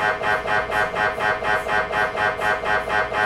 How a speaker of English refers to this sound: So unless you've had an MRI, you probably don't know, but they're extremely loud. They sound a bit like a jackhammer, someone jackhammering up concrete, really. For everyone listening out there, it sounds a little something like this.